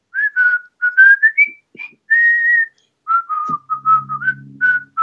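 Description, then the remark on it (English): A person whistles a bouncy, marching-style melody like the one in the British film Bridge Over the River Kwai, in short rising and falling phrases, clear, with a faint low hum joining near the end. “And, you know, it was like, what's the famous British movie, Bridge Over the River Kwai.”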